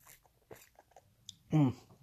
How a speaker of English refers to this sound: I had a feeling, but really feels cold. One second, I got to take a sip.